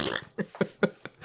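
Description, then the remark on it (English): A quick run of about five short, wet, squelchy fart-like bursts in a steady rhythm, fairly loud, with no talking. “Why does it sound like it's farting when you do it?”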